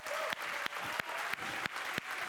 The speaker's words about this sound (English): So I want you to be ridiculous. If you want to yell noises, if you want to yell yes or amen or thank you and clap. So let's get a practice in.